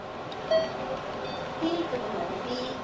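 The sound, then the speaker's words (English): A short electronic beep sounds in a hospital during chemotherapy, followed by another softer tone a second later, set against a steady background hum and faint murmuring voices. “You hear that beep?”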